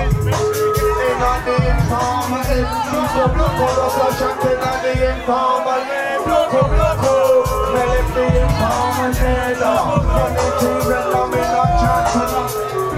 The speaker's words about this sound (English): in a packed basement in the hip Shoreditch neighborhood of London, … of legendary grime group … are playing to a screaming crowd of fans